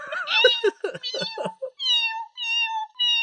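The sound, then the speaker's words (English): A cat named Susan, who is on a diet, makes a string of high, squeaky meows: a quick, wavering burst of short cries followed by three thin, drawn-out squeaks with brief pauses between them. “Does your cat make any funny noises?”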